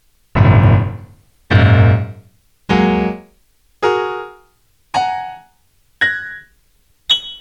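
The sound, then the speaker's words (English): Piano playing seven groups of three black keys, one after another, climbing from the low end to the high end at a steady pace, each loud chord ringing briefly and fading, with no talking. “Okay, now let's go and play all the sets of three black keys that you see grouped together.”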